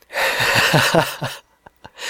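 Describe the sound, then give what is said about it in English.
A person breathes heavily into the microphone while talking: a loud, close breath rushes in for over a second, airy and rough like a heavy gasp or sigh, followed by a few short, soft puffs of air. “I'm sure you can hear me breathing.”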